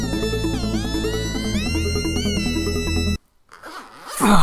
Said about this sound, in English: All right, sorry. Had to zip that up until we got back on to recording.